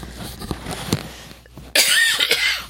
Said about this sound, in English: I say as I cough. Like that.